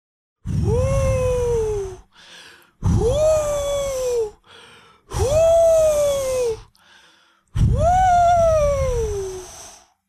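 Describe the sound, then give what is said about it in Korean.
A voice imitates a wolf blowing hard with its mouth at the pigs' wooden house: four long, strained, breathy blasts with a voiced, falling groan in each, separated by brief pauses and ending with short inhales. “늑대는 또 입으로 바람을 불기 시작했어요.”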